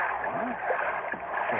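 A big inboard motorboat drifts on the water above a kelp bed after cutting its engine, surrounded by a steady wash of lapping and sloshing water that holds an even level throughout.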